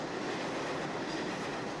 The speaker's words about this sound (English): It's still early, barely 7 a.m., but morale among commuters on the Atlantic Avenue platform in Brooklyn is already bleak. As an R train pulls into the station, the frustration on the riders' faces is evident, and the reason why is clear.